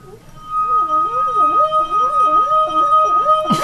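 A wet finger rubs a drinking glass rim, giving a steady, sustained ringing tone over wobbling, warbling lower pitches for several seconds, ending with a brief sharp clink.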